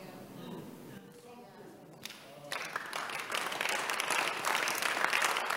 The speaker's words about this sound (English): No, God, thank God the men are clapping. God bless you, man. The women don't clap.